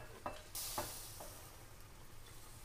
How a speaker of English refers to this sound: So these are done. So I'm going to pour the water off, or the sauce, into here.